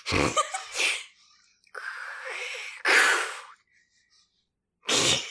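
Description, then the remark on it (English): A voice imitates angry, crashing ocean waves with a series of loud, breathy whooshes and hisses, some short and sharp, one longer and rumbling, separated by brief silences. The sound is to be looped underneath a reading of a fic. “Can you do some wave noises, please? Some angry waves?”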